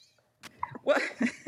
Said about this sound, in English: He's got the hiccups right now.